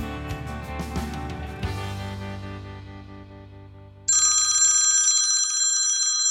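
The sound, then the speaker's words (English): A musical passage fades out, then a loud telephone bell starts ringing with a bright, continuous metallic trill that carries on to the end. No one speaks. “We have a phone now? How about that?”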